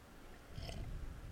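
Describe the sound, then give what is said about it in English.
A single quick, soft slurp as someone sips coffee, a brief airy hiss over a low murmur, with no talking. “I'm going to take a sip of coffee real quick.”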